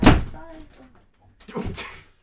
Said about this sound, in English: He slammed the door.